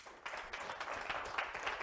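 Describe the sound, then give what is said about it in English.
A church audience breaks into steady applause to welcome the online church, many hands clapping together in a dense, continuous patter that holds at a moderate level throughout the short stretch, with no voices standing out. “Can you guys give them a hand clap?”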